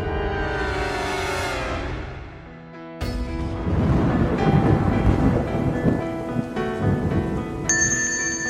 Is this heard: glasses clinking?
no